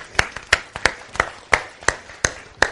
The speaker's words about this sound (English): Yeah, now let's clap. Come on now.